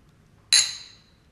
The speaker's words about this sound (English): Nice little clink there. Nice.